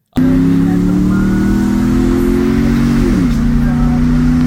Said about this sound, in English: And it, when it backfires, you hit like third gear, it goes, and it sounds like you hit a leaf going really fast.